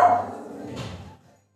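A dog barks twice in quick succession, a sharp bark followed by a second, slightly rougher one, then silence.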